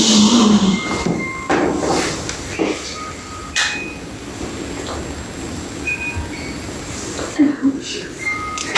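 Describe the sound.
A heavy wooden trap door in a house open to the public creaks and clunks open, with several knocking thuds and scraping over a steady rumbling background, and faint murmuring voices.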